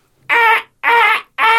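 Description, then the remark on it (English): A voice imitates a crow with three loud, harsh, nasal caws in a steady rhythm, each about a third of a second long with brief gaps between, the last one cut short. “That was more like a sort of van reversing. Maybe it was a crow reversing.”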